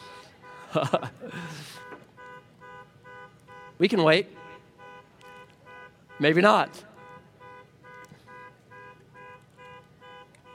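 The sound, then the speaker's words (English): A car alarm blares steadily in the background, a repeating electronic tone pattern running under several short bursts of a man's speech. “Someone's stealing your car.”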